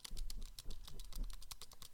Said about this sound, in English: Those are the keys. They sound exactly like a Mac keyboard, which is cool. And that's the only reason I bought it.